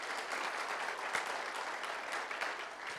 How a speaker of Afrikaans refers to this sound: Kom, geef hulle 'n hande klap.